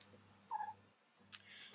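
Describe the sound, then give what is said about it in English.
A single short, fairly soft cat meow rises briefly, followed a moment later by a couple of sharp rustling bursts over a low steady hum, with no one talking. “Cats, I agree. Can I say something? The cat?”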